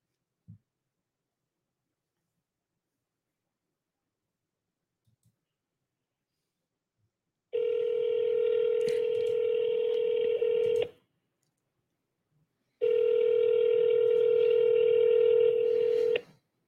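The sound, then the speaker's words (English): A phone call rings out: two long, steady electronic ring tones of about three seconds each, separated by a short pause, following a faint click near the start. No one speaks. “So when I call it from that other phone, my car get through, but on this one it rings.”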